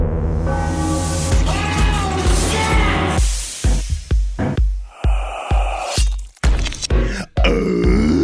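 A voice makes loud grunting warm-up noises: a long, strained guttural growl, then a choppy series of short, forceful grunts and throaty bursts with brief gaps between them.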